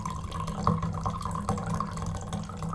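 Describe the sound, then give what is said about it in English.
Wine pours steadily into a glass, a continuous gurgling trickle with a few brief splashy bursts, moderately loud, with no voices. “I'm not peeing, this is wine.”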